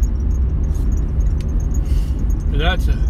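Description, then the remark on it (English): Strong wind roars steadily and loudly, a heavy low rumble buffeting the microphone for the whole stretch, with a brief high squeal near the end. “Man, that wind sure is blowing tough today.”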